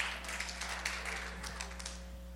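An audience applauds to welcome a speaker, a steady, dense patter of many hands clapping for a couple of seconds, fairly soft, over a constant low electrical hum with no talking.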